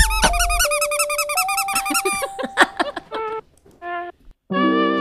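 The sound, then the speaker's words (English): A dog named Friedrich squeaks a squeaky toy: a burst of rapid, wavering high squeals, then several separate drawn-out squeaks with short pauses between, loud and shrill. “Friedrich, do the squeak the toy.”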